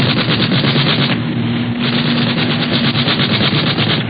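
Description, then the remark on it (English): Rapid, continuous machine-gun fire from an aircraft in a dogfight in the clouds, firing and missing, rattles in dense bursts over a steady droning hum, loud and unbroken for the whole stretch with only a brief dip in intensity partway through. “Firing at us. Firing and missing.”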